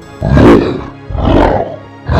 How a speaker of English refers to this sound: The lion charges at Lycaon and begins to bite his shoulder. Lycaon lets out a growl and begins to claw out the lion's eyes out of his sockets.